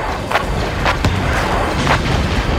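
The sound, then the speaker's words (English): Mortar shells burst at irregular intervals in a battle, three or four muffled booms rising out of a constant roar of battle noise. “The mortars were still falling steady to my right, and they tagged that other E-Web.”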